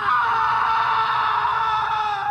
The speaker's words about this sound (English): When he did enter, he saw something dark in the corner, and upon seeing it more clearly, he screamed outright.